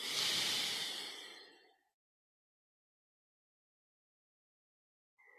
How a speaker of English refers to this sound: Breathing in and out.